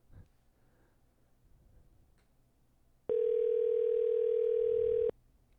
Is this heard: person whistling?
no